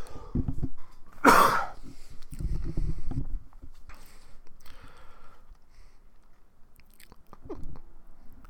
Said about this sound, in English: Yeah, oh god, I totally lost my train of thought because of that cough.